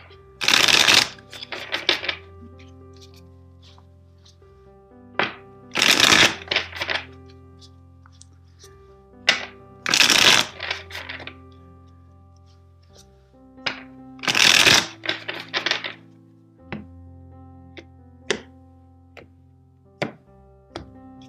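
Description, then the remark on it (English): A deck of tarot cards is shuffled four times for a reading, each pass a crisp riffling burst of flapping cards separated by brief pauses, with a soft sustained musical drone underneath. “First, let's shuffle the deck 4 times for you.”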